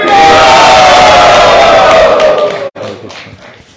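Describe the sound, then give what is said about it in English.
A loud crowd at a ceremony cheers and whoops together for Wales in one sustained roar that holds strong for over two seconds, then cuts off abruptly and trails into scattered fainter shouts and claps. “Let's hear a cheer for Wales.”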